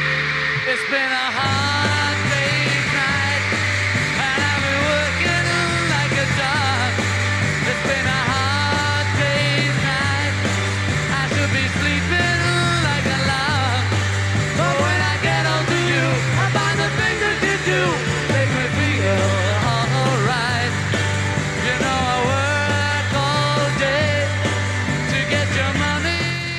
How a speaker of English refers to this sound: Let's hear what this live version is like. Oh, there's a crowd there.